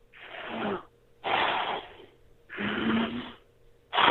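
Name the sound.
imitated deep heavy breathing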